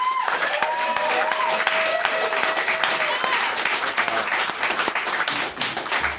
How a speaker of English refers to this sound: So that was all of our speakers. Please, everyone, join me in a big round of applause for everyone who spoke.